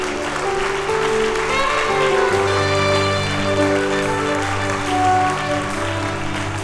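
An audience applauds the King of Kings steadily for several seconds, a dense wash of clapping laid over sustained keyboard chords that shift pitch partway through; no one speaks.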